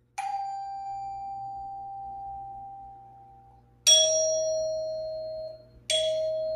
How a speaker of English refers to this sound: You know, whichever way you got a doorbell, you hear that doorbell chime. Did you hear those chimes, people? Well, that was just an example in case some people are like, what, a doorbell?